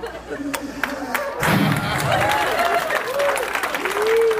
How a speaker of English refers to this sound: Don't clap for kidnapping. What are you guys doing?